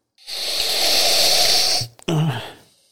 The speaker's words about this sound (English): You good over there? Damn. It's a big sniff.